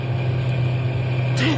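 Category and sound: vehicle, truck engine running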